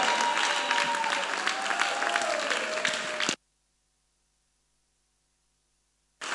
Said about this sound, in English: Until she picks the mic, don't stop clapping.